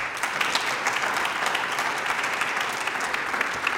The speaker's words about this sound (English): So let's give them a big clap